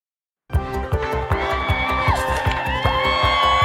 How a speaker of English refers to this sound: What a crowd. Tuesday morning, 4th of April, 2023.